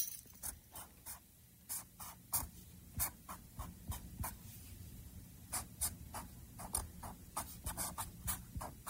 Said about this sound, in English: Writing out a math equation on their computer. Okay. Or, sorry, on a piece of paper. Yeah, yeah. With a Sharpie.